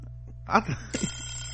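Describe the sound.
An alarm bell starts ringing partway through, a steady, bright metallic ring that holds to the end over a low background hum, just after a brief burst of voice.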